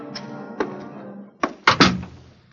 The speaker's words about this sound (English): You turn the key in the lock, and you open the door.